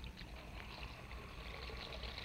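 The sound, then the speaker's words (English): Water runs steadily into a bathroom basin holding New Quick Lux soap flakes, for washing stockings, a continuous rushing hiss with a low rumble underneath that holds an even loudness throughout, with no voices. “I'll just pour a few of these flakes into the basin and turn on the water.”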